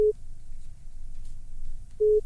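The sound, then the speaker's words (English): A phone line's busy tone after a disconnect: two short, steady mid-pitched beeps about two seconds apart, with a low rumbling hum filling the gap between them. “I think one of the lines just keeps disconnecting.”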